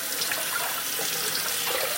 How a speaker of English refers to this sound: So I'm just giving my 1 cup of blueberries a rinse.